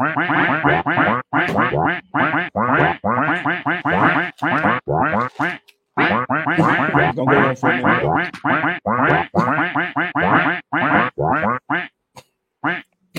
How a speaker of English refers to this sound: I'm guessing those is big ducks.